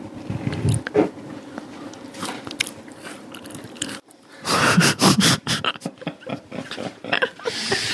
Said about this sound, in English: We're spilling biscuit all over the floor. It's okay. It is really good. I'll do a crunchy one.